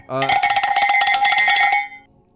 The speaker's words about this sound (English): That's the show bell, so I guess it's time for the show.